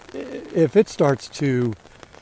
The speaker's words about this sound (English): Yeah, we went from 0 to 60 pretty quick here. I actually enjoy walking in the rain.